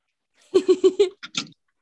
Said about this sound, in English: Sorry, my cat's meowing.